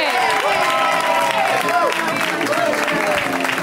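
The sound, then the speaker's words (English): A comedy show audience applauds steadily with a dense wash of clapping, joined by whoops and cheers rising and falling in pitch, sustained and loud throughout, welcoming a comedian on their first time on the show. “We give them a big, warm round of applause.”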